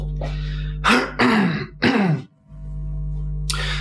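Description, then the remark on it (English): A person clears their throat and coughs in a few rough, harsh bursts, over a steady low electrical hum, with a brief quiet gap afterward. “I don't know why I'm coughing so much.”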